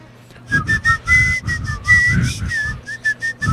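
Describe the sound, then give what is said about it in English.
A person whistles a quick, lilting melody, with short bursts and a few held notes, accompanied by breathy, rhythmic low-end puffs throughout. “I want to do the Mexican whistle.”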